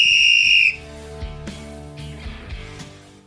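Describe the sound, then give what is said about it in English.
A sharp, piercing whistle blast rings out loud for under a second, then cuts off, leaving quieter tonal sounds trailing behind. “Whistle. Oh, whistle! Hold on!”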